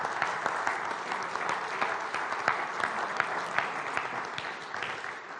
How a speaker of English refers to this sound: Could we give Rhoda a quick round of applause, please?